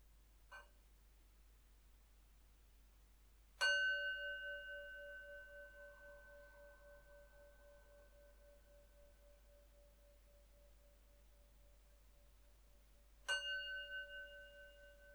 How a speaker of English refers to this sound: And it'll start with three sounds of the bell.